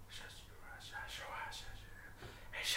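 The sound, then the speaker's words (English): Soft, breathy whispering voices drift in and out over a low steady hum, faint and airy with no clear words, giving an eerie, unsettled feel. “more of these whispers.”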